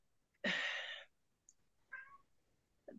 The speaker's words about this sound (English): Who's the meow? Little kitty.